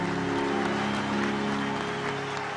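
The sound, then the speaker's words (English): An audience claps hands for Jesus in a dense, continuous patter of overlapping claps, loud and steady throughout, with a faint murmur of voices and a low sustained hum underneath. “Clap your hands for Jesus if you can, somebody.”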